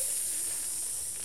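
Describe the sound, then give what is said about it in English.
A voice imitates air escaping from balloons with a steady, breathy hiss that holds for about a second, bright and fairly loud, fading only slightly toward the end. No words are spoken. “Hear the air deflating out their balloons.”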